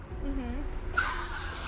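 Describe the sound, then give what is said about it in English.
A short, wavering car horn tone sounds over low traffic rumble, then a harsh, hissing tire screech with a high squealing whine cuts in and carries through to the end. “You hear the horn again. The horn, you hear screeching.”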